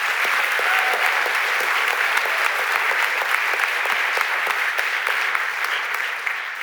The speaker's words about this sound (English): Well done. Thank you so much. Another round of applause for Hollywood House.